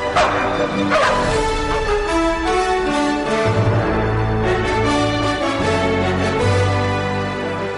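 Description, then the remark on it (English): Several dogs bark, yip and let out drawn-out, tuneful whines in a busy, continuous chorus as part of a performance, fairly loud, with no one talking. “And this performance will have you barking for joy.”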